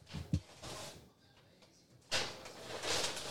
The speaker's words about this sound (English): Just pull the drawer out. Pull it. Just grab it.